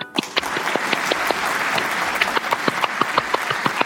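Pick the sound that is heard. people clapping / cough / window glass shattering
people clapping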